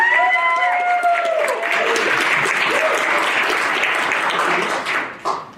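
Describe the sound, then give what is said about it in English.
A crowd breaks into sustained applause, a dense wash of clapping that stays loud for several seconds before tapering off, with a few raised voices or cheers near the start. “So give her a round of applause.”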